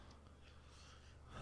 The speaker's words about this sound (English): I'm just trying breathing heavy into the mic, huh?